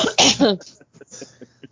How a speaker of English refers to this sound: Excuse me. I'm sorry for the coughs and the sniffles.